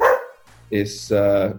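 A dog barks twice in quick succession, loud, each bark full and slightly drawn out, following a brief burst of sound at the start.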